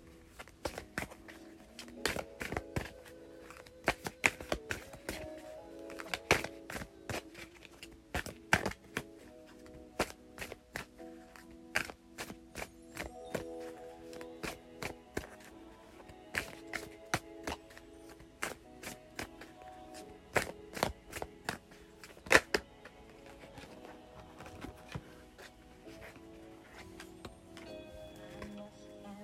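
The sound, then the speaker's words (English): Tarot cards are shuffled in repeated bursts of crisp, snapping clicks, heard over a soulful song with a singer playing steadily in the background. “listen to the one and only Miss … as I shuffle”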